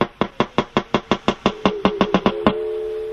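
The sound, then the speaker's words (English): A wild walrus underwater in the Canadian High Arctic gives a rapid train of about a dozen sharp, loud knocks that quicken slightly, followed by a sustained ringing, bell-like tone, part of a medley of walrus breeding sounds. No voices. “But this is a wild walrus, recorded in the Canadian High Arctic, underwater.”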